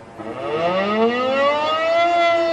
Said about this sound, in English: Warning sirens wailed across the city, and its people scurried for cover, their radio station urging them to stay indoors.